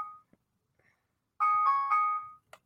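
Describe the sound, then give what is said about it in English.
A phone ringtone plays a brief, bright electronic melody for about a second, clear, preceded by a short chime-like blip and followed by a small click. “And I was looking for this phone and nobody was able to tell me where this phone was.”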